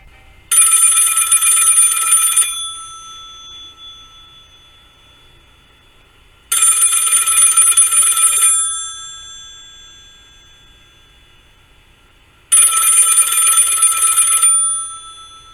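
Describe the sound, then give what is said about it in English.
An old-fashioned telephone bell on a phone sitting at a bar rings three times, each loud, metallic two-second burst followed by a few seconds of quiet and a fading ring-out, with no voices around it. “The phone rings and they both jump.”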